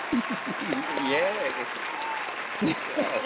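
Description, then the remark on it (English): Steady applause fills the whole clip, a dense patter of clapping, while voices talk and call out over it. “We're going to give everybody an applause, and I'm about down too.”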